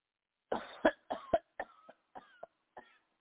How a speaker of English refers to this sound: Deep breath and cough.